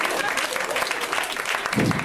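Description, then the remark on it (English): A burst of audience applause at a stand-up comedy show, given for condoms after a safe-sex joke, dense steady clapping from many hands filling the whole clip at a fairly loud level, with a low voice swelling in near the end. “Round of applause for condoms?”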